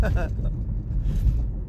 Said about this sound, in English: Can you hear the bump? So I guess for as much as I bitch and complain about Michigan road construction, you can hear the fucking bumps here, right?